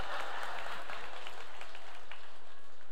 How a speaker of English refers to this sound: So, yeah, clap it up for the fan one time.